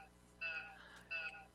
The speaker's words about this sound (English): I'm hearing a beeping sound from one of you.